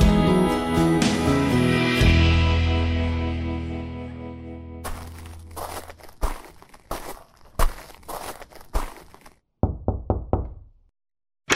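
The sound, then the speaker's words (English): A fading musical sting gives way to loud knocking on the door of a family home: an irregular run of sharp raps, a brief pause, then a quicker, lighter cluster of knocks. “Come in, come right on in. You don't need to knock, this will always be your home.”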